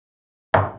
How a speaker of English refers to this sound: Yeah, I'll cheers to that.